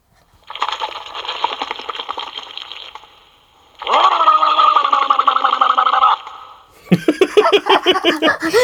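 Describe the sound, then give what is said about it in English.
Water sloshes and gurgles inside a water bottle held to a mic in a rapid, bubbly rattle for about three seconds, then returns louder with a low, warbling Boss Nass voice blended into the bubbling, followed by choppy gurgling bursts. “So the first sound is just the water bottle. The second sound is Boss Nass's voice plus the water bottle.”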